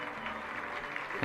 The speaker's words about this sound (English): Nice round of applause for the umpire. According to the crowd, that's the first thing he's done right the entire night.